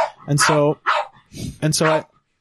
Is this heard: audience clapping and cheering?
no